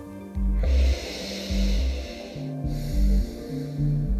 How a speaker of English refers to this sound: Now with the next inhalation, you're going to inhale through the nose and exhale through the nose.